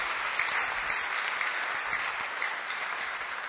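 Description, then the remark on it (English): An audience claps steadily throughout, a dense, even wash of many hands with scattered sharper claps standing out, no voices rising above it. “You're clapping. Is it for me?”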